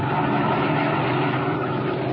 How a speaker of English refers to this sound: As our story continues today, we find him and his henchman Spike in their black sedan, slowing down along the road and searching for a likely place for what Dinelli has in mind.